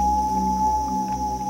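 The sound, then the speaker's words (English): A common loon's call: a single sustained, mournful wailing tone held steady at a mid-high pitch, fairly loud and heard alone without any voices. “There's nothing more haunting than the sound of common loons singing across the lake in the summer.”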